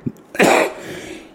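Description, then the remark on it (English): A single harsh cough bursts out into the microphone, with a faint throat-clearing rasp trailing after it before things go quiet. “Excuse me. Cough.”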